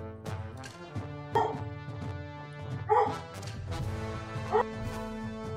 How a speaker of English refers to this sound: Sorry, my dog is barking.